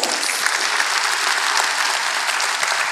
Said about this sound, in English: Let's clap for that, man.